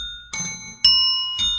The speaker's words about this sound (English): We're spreading the love through Stump the DJs, and we're going to tune up our ringer dinger bells. Everybody's scrambling for their bells.